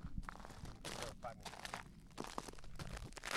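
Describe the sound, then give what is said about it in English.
Footsteps crunch across a salt lake bed: a steady walking rhythm of gritty, brittle crunches, about seven steps, fairly soft, with faint outdoor background noise. “And one cool thing real quick I want you guys to hear is the sound that this this lake bed makes when you step on it.”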